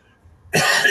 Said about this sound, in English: All apologies for the coughing.